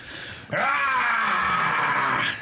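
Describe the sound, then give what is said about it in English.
A man belts out one loud, sustained battle scream, vocally imitating an armored warrior's war cry. It starts abruptly, holds strained and raspy for about two seconds, then cuts off, with no talking over it. “can you give us a Space Marine scream for a second?”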